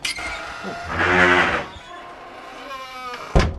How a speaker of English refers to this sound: Sound affects, meaning you have a choice. When you say door close, you can do this. Or you can do this.